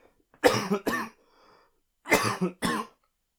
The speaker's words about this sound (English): Pardon me, I need to cough now.